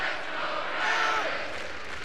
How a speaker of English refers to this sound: Listen to this crowd.